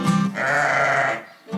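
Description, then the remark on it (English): A sheep lets out a loud bleat lasting about a second, wavering and nasal, followed by the start of another brief call. “But have you ever tried to steer a sheep? All right, time for dinner. Come back.”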